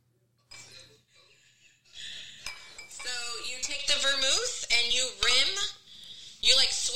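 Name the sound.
glass clinking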